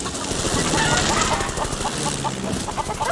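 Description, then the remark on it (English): A flock of chickens by a chicken house clucks and squawks in a loud, crowded flurry as they are scattered by something running straight through the flock, a continuous commotion with overlapping calls throughout. “We rolled straight through the whole flock. And I've always enjoyed scattering chickens, you see.”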